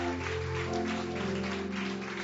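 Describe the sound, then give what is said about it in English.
A church audience claps for Jesus together in a dense, steady wash of applause, with a sustained keyboard or organ tone droning underneath throughout. “Give Jesus a mighty hand clap, everybody.”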